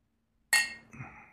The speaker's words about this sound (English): Are we going to cheers it? Yeah, we'll cheers it.